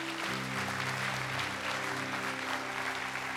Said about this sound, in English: Can we clap our hands for people?